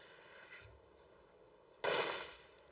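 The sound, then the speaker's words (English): A sharp bang from a firecracker thrown out of a tent door into the dark on the steppe in winter cold of minus 30 to minus 40 degrees bursts out of quiet night air, its crackling decay trailing off over about a second, loud, with no voices. “And just before I go to bed, I throw a few firecrackers out the tent door into the dark as a way of scaring off the wolves, and hopefully it works.”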